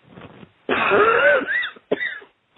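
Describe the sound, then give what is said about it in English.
People cough during a deliverance prayer: a harsh, strained cough bursts out loudly, followed by a shorter rasping cough and a final brief catch, with a fainter throaty sound at the start and no talking. “And take a deep breath. That's right. Cough them all out.”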